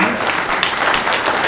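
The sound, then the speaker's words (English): At a stand-up comedy show, a crowd claps steadily, a dense, even wash of many hands applauding at a constant loudness with no voices standing out. “Applause isn't necessary.”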